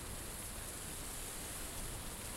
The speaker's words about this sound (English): And there's just the sounds of crashing rain.